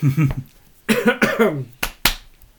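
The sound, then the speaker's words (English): Two sharp hand claps in quick succession ring out near the end, following a few seconds of brief voiced vocal sounds. “Clap on, clap off the clapper.”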